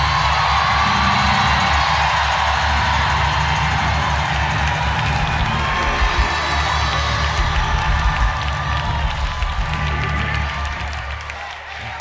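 A large church audience jumps up and screams and cheers continuously at high volume at a preacher's urging, a dense roar of many voices with whoops and scattered clapping that swells, then gradually fades near the end.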